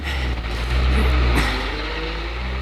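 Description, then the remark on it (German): A white delivery van's engine roars loudly and steadily as it shoots out of a garage shed and speeds off, with a deep rumbling drone that swells briefly early on. No one speaks. “Kaum war der weiße Lieferwagen aus dem Garagenverschlag geschossen”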